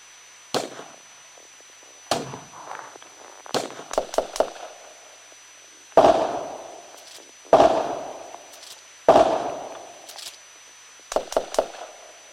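gunfire

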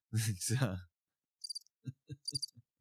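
cricket chirping sound effect

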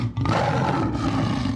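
tiger growling

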